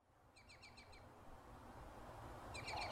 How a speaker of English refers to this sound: Migratory birds are making their presence known on the Front Range once again. As cheery as they sound, in reality, many of the bird populations that make their way through Colorado are recovering from a devastating 2020 migration